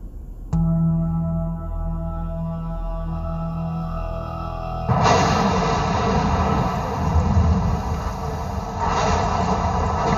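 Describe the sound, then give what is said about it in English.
At the start of a music video closing in on a house, a steady, low droning tone gives way to a sudden loud clap of thunder with lightning that rolls on as a heavy, wide rumble, swelling once more near the end. No one speaks. “Music video starts off as like closing in on a house, lightning and thunder and going on.”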